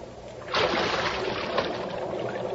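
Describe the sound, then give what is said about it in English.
After a quiet moment, a sudden loud splash erupts as a person jumps about 12 feet down into water in a dark sewer, followed by steady churning and sloshing that carries on to the end. “Come on in. The water's fine. It's about a 12-foot fall.”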